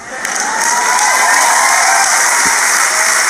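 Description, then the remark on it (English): An audience applauds and cheers, a dense, steady wash of clapping mixed with raised voices and whoops that stays loud for about three seconds without easing off. “You hear that? That's not enough support.”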